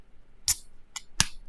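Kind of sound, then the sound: food or drink, beer can cracking open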